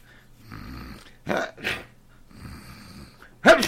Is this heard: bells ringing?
no